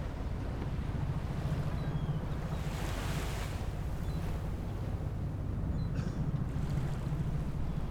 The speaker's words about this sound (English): Murky boat wake, bobs a buoy in the water. The buoy rubs its lustrous skin between rough decking and the speedboat's fiberglass. It squeaks to a rhythmic sea song.